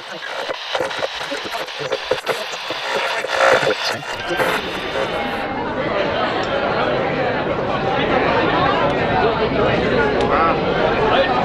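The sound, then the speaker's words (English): Busy crowd chatter fills the common room of a roadside inn serving dinner to a crowd of travelers, a dense, steady babble of many overlapping voices that swells in after a few seconds of sharper clattering sounds and stays loud to the end. “A door slams closed, and we find ourselves in the common room of a roadside inn. The room is busy serving dinner to a crowd of travelers.”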